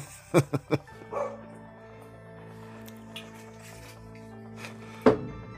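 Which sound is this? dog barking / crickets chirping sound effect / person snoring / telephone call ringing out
dog barking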